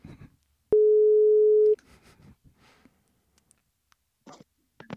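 A single loud, steady telephone ringing tone sounds for about a second, a clean pitched beep heard while a call connects, followed by faint rustles and brief soft noises.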